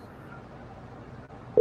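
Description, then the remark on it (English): A loud, steady phone ringing tone cuts in abruptly at the very end, following a stretch of low, murmuring background noise, as a call is placed to a United Airlines contact live on a radio show. “So phone is ringing.”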